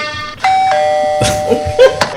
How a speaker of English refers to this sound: See, somebody's knocking at the door.